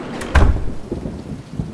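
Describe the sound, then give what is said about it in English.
Steady rain hisses on a street throughout, with a deep, heavy rumble of thunder swelling early on and then fading back into the downpour. No voices are present. “I'm out the back door, walking on the street. And of course it's raining.”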